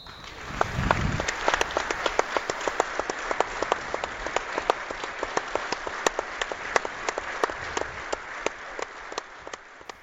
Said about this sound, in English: The evening began with a minute's applause for club legend Peter Gelson. 516 games between 1960 and 1975, and fondly remembered by countless Bees fans.